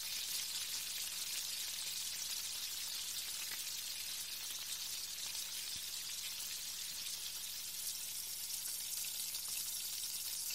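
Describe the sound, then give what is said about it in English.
A steady sizzle of goose loin frying in a pan, with a bright hiss and scattered small crackles and pops running evenly throughout, no voices present. “And then integrate into the still-frying goose loin.”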